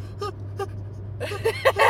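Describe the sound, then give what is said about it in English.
A voice fakes a sneeze: two short breathy intakes, then a quick cluster of sharp, airy bursts that end louder, over a steady low hum. “You know, yeah, it's like doing a fake sneeze.”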